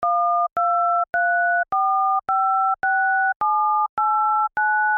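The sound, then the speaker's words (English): Nine touch-tone phone keypad beeps for buttons one through nine, each a steady two-pitch tone about half a second long, separated by brief gaps in an even, clear sequence with no talking. “Here are the numbers 1 through 9 on a TouchTone phone.”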